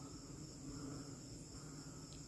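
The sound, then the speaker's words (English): A steady night chorus of frogs croaking after hard rain has made a small swampy pool, a low continuous pulsing blended with a high, constant insect trill, faint and unbroken, with no voices. “Do you hear that? The croaking of the frogs.”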